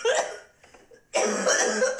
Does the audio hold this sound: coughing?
yes